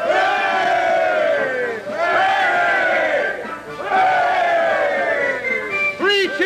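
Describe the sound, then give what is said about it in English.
A large parade crowd roars out three rising, sustained cheers for the clockmakers in quick succession, each swell of voices loud and full before fading, with a shorter burst starting at the end. It is a parade of tradesmen with flags, banners and bands. “Three cheers for the clockmakers!”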